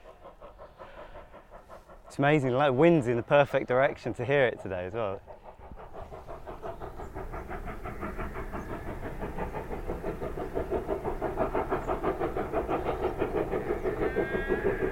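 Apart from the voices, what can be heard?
steam train passing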